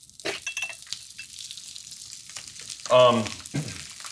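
A steady, crackling sizzle of food frying in hot oil in a pan, with bursts of clinking. A short vocal sound briefly rises over it near the end.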